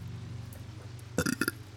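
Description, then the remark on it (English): A loud burp erupts after a quiet stretch, a short rough belch with a couple of quick pulses over about a third of a second, with no talking. “I can smell it over here. You're welcome. Does it smell like the tacos?”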